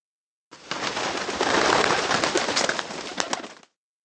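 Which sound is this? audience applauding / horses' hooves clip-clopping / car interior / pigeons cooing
pigeons cooing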